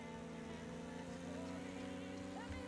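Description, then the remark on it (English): A small car engine buzzes steadily at a high, thin pitch, much like a string trimmer, holding a constant drone for the whole stretch with no one talking, as the car is raced through hairpin turns. “It sounds like a fucking trimmer.”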